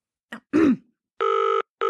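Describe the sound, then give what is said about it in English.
A short throaty grunt, then a telephone starts ringing: one steady electronic ring burst followed by the start of a second, loud, with no talking. “That call... Yeah, use my phone.”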